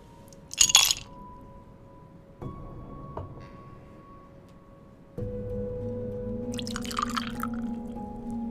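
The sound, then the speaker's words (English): Ice clinks sharply into a glass, then a spirit pours steadily over it with a soft splashing rush, followed by a few bright crackles and clinks as the ice settles. Fairly quiet. “Would you like that poured over ice?”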